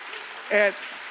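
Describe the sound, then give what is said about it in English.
A crowd claps steadily throughout, a dense wash of applause, with a brief voiced shout or cheer rising over it midway. “And that, yeah, clap on that one.”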